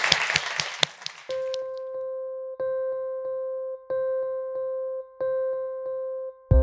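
A short burst of audience applause, dense clapping with a few sharp hits, fades after about a second. A steady electronic tone then sounds, restarting in evenly spaced pulses.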